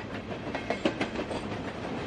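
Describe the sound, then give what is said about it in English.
A train rumbles steadily along the tracks, its broad, continuous roar broken by faint rhythmic clacks of the wheels, with no voices. “Hear the train moving.”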